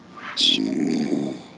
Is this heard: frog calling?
no